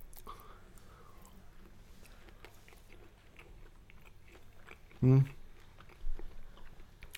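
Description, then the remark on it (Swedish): Chewing and biting sounds of someone eating a Gudruns stockholmare sausage in a sausage taste test, soft wet mastication with a sharper burst of mouth noise midway, fairly quiet overall with no talking. “Bra tuggmotstånd. Fast den smakar lite mer, lite som en frukostkorv.”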